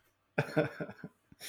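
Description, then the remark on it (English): A quick string of several muffled, quiet coughs made off-mic, ending with a short breathy rush of noise. “Apparently, like, excuse me, had to cough off mic there.”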